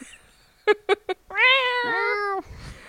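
A cat gives three quick, short chirping meows in a row, then lets out one long, drawn-out wailing meow that holds steady before cutting off. Fairly loud, with no talking.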